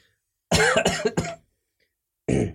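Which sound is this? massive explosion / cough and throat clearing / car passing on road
cough and throat clearing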